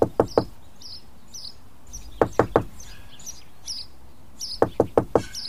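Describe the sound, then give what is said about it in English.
Three sets of sharp wooden knocks on the door of a little old cottage in the woods, each a quick burst of three raps with pauses between, while birds chirp and tweet softly in the background. “Surely if I knock on the door and use my best manners, they will at least let me sample a morsel.”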